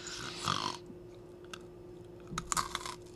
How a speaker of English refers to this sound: I hope you all heard that crunch.